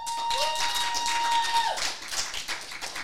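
An audience claps and cheers in a dense, steady burst to vote for Queen Latifah in a matchup against Nolan Ryan, with a sustained shrill whistle riding over the applause before the clapping thins and trails off after about two seconds.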